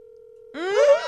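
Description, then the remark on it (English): A steady electronic ringback tone hums for about half a second as a woman phones her fiance, then a loud, rising voice breaks in and drowns it out. “If he doesn't pick up, that doesn't count as our phone a friend.”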